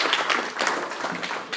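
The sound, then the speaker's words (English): A crowd breaks into steady applause for a young man, many hands clapping together in a dense, even wash of sound that holds throughout the short moment. “Let's have a round of applause real quick for this guy.”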